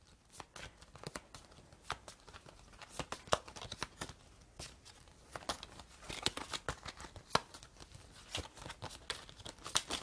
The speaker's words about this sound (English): Okay. Great. Back to shuffling.